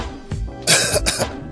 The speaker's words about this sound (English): I do have a cough. Let's see how this goes.